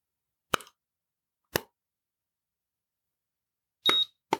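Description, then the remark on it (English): A handheld barcode scanner used to track parcels clicks twice as it is run along boxes, then gives a short, high-pitched beep as a parcel registers on the computer, followed by one more sharp click. The sounds are isolated, with silence between them and no talking. “And it'll make a little beeping sound, as you can hear.”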